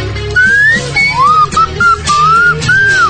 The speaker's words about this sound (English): A look at you all, see the love there that's sleeping, while my slide whistle gently weeps.